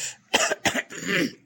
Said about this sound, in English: but I just need to clear my throat a little bit.